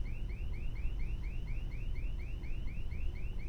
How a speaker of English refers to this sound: No one has ever set off the alarm before.